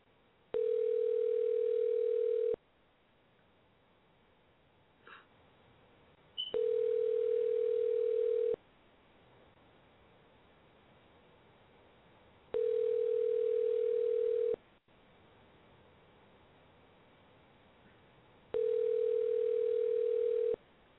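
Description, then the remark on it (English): A telephone line tone sounds in four steady two-second bursts separated by pauses of about four seconds, heard clearly over a quiet, muffled phone-line hiss with no one speaking. “Sound like it was the wrong number, huh?”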